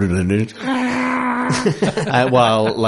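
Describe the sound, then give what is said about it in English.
A voice imitates modem beeping, like the Mechanicus speech in the game Mechanicus from the Warhammer 40,000 setting, with sustained, warbling electronic-style tones that shift pitch over a few seconds, delivered loudly with no other sounds around it. “But with more modem noises. Beep.”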